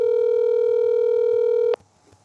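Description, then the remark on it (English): A steady, loud telephone dial tone hums unbroken for almost two seconds while a radio show calls a dropped caller back, then cuts off abruptly, leaving only a faint low murmur of line noise. “Calling him back.”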